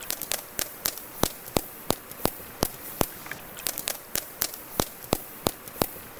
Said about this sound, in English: Turns out the key to underwater echolocation is vocal fry. Yeah, that creaky voice that some people love to hate, only this time in a whale. Here's what it sounds like.